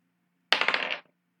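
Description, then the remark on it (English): A die is rolled and clatters across a hard tabletop in a quick burst of rapid clicks and rattles lasting about half a second, then settles on a 1 with a faint final tap over a low steady hum. “I rolled a nat 1.”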